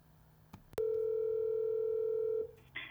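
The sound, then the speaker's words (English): A telephone dial tone sounds steadily for nearly two seconds as a call is placed, preceded by a click and followed by a brief burst of line noise. “Let me call Marina, and let's talk about Bosnia”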